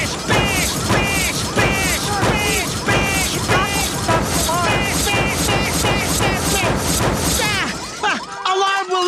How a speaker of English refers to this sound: I have a sledgehammer. I'm gonna start bashing the car with a sledgehammer.